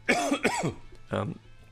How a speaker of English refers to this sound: oh, why got such a cough today?